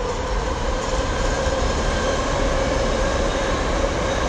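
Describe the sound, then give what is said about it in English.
A BART commuter train in Oakland rumbles steadily past, a loud continuous roar of rail noise with a faint high whine riding over the low wheel rumble, no talking. “So here's a BART coming passing right now, and if you can hear it.”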